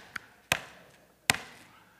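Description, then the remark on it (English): A dangling side mirror, hanging by its cord, bangs against a car body on a highway: three hollow knocks at an uneven pace, a faint first tap followed by two sharp, louder bangs that ring briefly, with no talking. “And then I noticed that the side mirror was, you know, it was just kind of dangling by the cord. It was banging against the car like this.”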